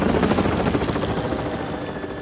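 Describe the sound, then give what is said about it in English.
Harold the helicopter's rotor chops loudly and steadily as it gets closer to a mine, a rapid, rhythmic whirring beat and a dense engine roar, holding fairly constant over a couple of seconds with no voices. “Down in the mine, Thomas could hear Harold the helicopter getting closer.”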